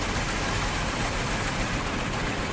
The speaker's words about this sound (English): Oh, now it's rubbing the bottom of my car. Oh, rinse. Here comes the rinse cycle.